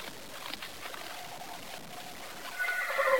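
A horse gives a short, high, wavering whinny toward the end, rising out of a steady outdoor background hiss. No one speaks.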